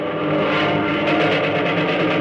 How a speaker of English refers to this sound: Coming out of that bank of clouds up there behind them. Planes! Jumping Jupiter, those look like... That's what they are, son. American pursuit planes. A whole mess of them.